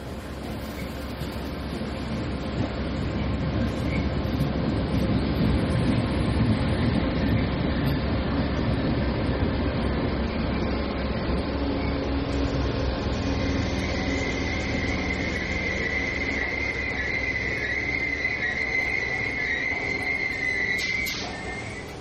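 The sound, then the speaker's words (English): A steady, loud rumble of trains moving through a station, with rolling low-end noise and a rising metallic squeal of wheels or brakes toward the end. “Do you know when the next train for London Paddington is, please?”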